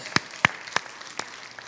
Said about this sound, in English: Yeah, we can clap to that.